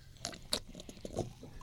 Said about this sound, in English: Very ASMR. There you go. I don't know what that means, but I like it. That's when people just basically have the noise of them eating